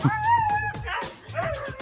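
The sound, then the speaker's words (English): A husky howls and whines loudly while being bathed with a hose, in drawn-out, wavering cries that rise and fall, broken by short yips, with a rushing, hissy noise in the background. “These Huskies, they like to talk, and they are loud, and this is not a fan of the bath either with the hose.”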